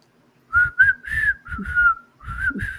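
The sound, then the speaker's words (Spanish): A person whistles a short wavering tune by mouth, several breathy notes in quick succession, moderately loud, imitating the special sound of the whistles a church group carries, with no talking. “Sí, no puedo hacer el sonido muy bien, pero se llevan los silbatos y se hace un sonido especial como...”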